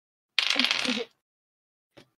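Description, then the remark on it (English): Two dice rattle and clatter across a hard surface for under a second, fairly loud, then go quiet before one faint final tap. They land on a 1 and an 11. “Well, I got a 1, but at a plus side, I got put 1 on one of the dice, but on the plus side, the other one was 11, so that's a 12.”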